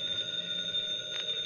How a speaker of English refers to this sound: Your phone's ringing, stupid. How can a phone ring smart?